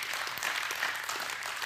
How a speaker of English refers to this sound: Come on, church. If you believe that, give God a big clap, because I believe with all my heart.